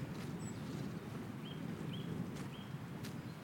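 Several short, thin nuthatch calls repeat at a steady pace against a low outdoor rumble in woodland, in warmer, sheltered parts by a stream in a valley; one higher note comes before them.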